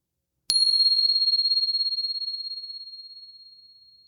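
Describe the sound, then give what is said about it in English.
A single bell strikes once, clear and high-pitched, then its tone rings on steadily with a gentle wavering shimmer, slowly fading over several seconds in otherwise quiet surroundings. “And here comes the bell.”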